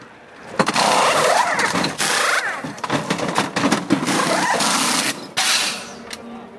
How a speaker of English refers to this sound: I'm standing 10 feet away from Roger Penske and his crew. Elio Castroneves, his car is coming in for pit stop practice right now.